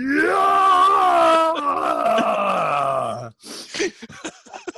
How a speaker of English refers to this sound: I think my 1 year old son was doing some Krayt Dragon yells earlier when he was going.